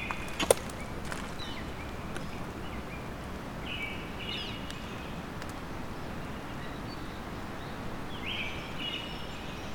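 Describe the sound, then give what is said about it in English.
A Black-throated blue warbler sings faint, buzzy rising phrases, repeated a few times, over a steady rushing background noise such as flowing water. “Black-throated blue.”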